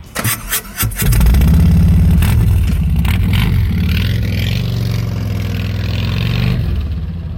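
A motorcycle engine cranks briefly, catches with a burst, then settles into a loud, close, deep rumbling idle with slight revs throughout; no one speaks.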